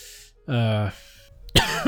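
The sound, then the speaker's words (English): A sudden, sharp cough bursts out near the end, following a brief voiced sound that resembles throat clearing. “I thought about the bricky and I coughed.”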